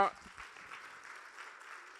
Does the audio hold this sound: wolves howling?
no